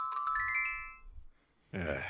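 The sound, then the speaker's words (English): A short, bright chiming jingle, the improv theme for a games segment, of a few quick rising tones rings out for about a second, fades into near silence, then a voice begins speaking. “That was the improv theme for games, of course,”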